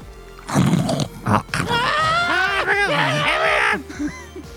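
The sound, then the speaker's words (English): A voice imitates a squealing pig, with a couple of harsh grunting bursts followed by long, wavering high-pitched squeals that rise and fall, loud and strained throughout. “I went the squealing route.”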